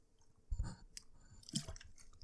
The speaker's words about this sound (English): Let me grab a swig of water here because my mouth is going to get dry.